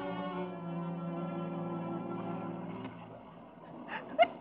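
human body sound, sneeze

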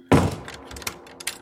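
household object, door slammed shut

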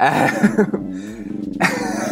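animal, dog barking

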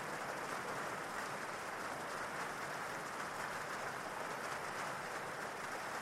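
nature, falling rain

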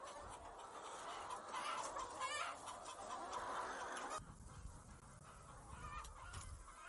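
bird, chickens clucking

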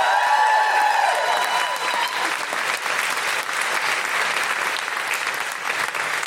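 crowd, audience round of applause

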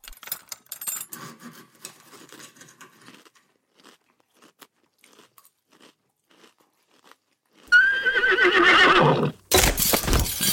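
animal, horse neighing

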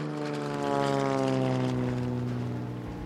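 vehicle, propeller plane flying overhead

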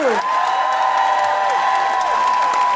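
crowd, audience applause

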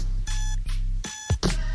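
signal or alarm, alarm clock ringing

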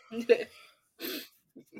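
animal, dog snoring

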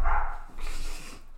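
animal, dogs barking downstairs

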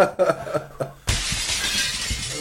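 impact, window glass smashing

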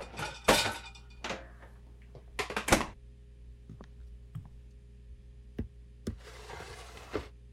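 household object, dishes clinking

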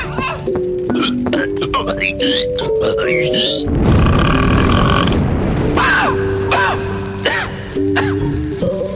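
human body sound, baby burping

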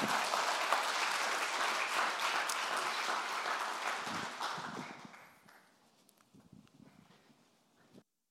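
crowd, audience round of applause

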